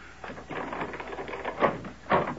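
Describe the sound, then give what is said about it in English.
A door being opened: a run of rattling clicks and knocks from the handle and latch, ending in two sharper thumps as it swings free, with no one talking. “I'll get the door”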